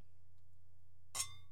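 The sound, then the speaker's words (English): One sharp clink of glasses touching in a toast before tasting a drink, followed by a brief bright ringing that fades quickly, set against a low steady hum with no talking. “Let's do this. Hey, cheers.”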